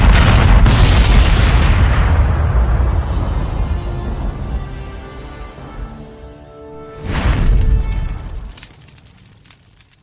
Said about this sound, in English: You know what that deserves? That deserves a little cannon fire, I think.